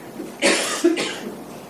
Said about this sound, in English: Or maybe someone coughs, and that sound captures your attention.